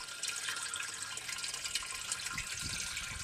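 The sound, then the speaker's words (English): Clear, cold water pours steadily out of a pipe into a metal can at a tiny well by an old mill pond down a rural road, a continuous hissing splash with a faint hollow ring, with no voices. “Clear, cold water pours out of a pipe into a metal can.”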